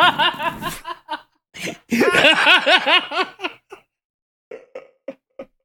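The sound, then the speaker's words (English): A person coughs in a series of harsh bursts, with a longer throaty, laugh-like fit in the middle, then a few short, quieter coughs trailing off after a pause. “No, I'm sorry, I'm coughing, by the way, everybody.”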